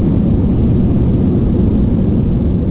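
An airplane taking off, its engines roaring in a loud, steady, low rumble that fills the whole stretch, a dense continuous drone with no voices over it.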